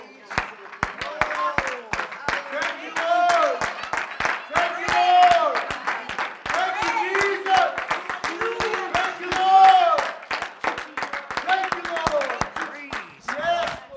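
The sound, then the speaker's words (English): An audience claps their hands for Jesus in a steady, irregular patter of sharp claps lasting the whole stretch, with voices calling out and talking over the clapping. “Could we just give him a hand clap?”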